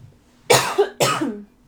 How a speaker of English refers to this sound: Oh God, I have to cough. Sorry.